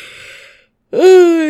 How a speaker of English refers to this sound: I'm yawning. Fuck, you're the it's worst. Infectious. It is, across countries.